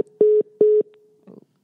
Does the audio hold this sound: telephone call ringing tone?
yes